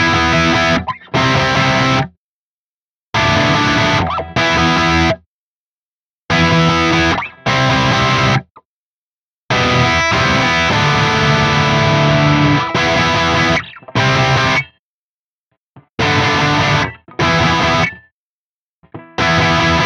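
Distorted electric guitar, a Stratocaster on its bridge pickup, through an amp cabinet impulse response miked with a Royer 121 and a Sennheiser 421, plays short chunky chord bursts separated by abrupt silences, loud and gritty with a crunchy, saturated edge and no voices.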